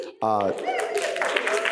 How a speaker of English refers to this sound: All the women immediately clapped their hands.